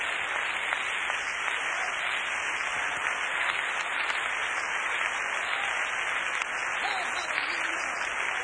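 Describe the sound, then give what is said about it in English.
A large crowd gives the Lord a hand clap of praise, a dense, steady roar of many hands clapping at once that holds for the whole stretch, with faint voices barely audible beneath it. “Put your Bible down and give the Lord a great big hand clap of praise right now.”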